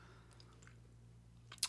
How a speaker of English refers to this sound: Sorry if you hear that. It's my dog in the background.